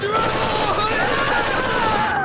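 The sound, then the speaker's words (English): Rapid, continuous automatic gunfire aimed at a bus rattles at a fast, even rhythm for about two seconds, staying loud and steady throughout, with a tonal drone running underneath. “Why are they shooting at the bus?”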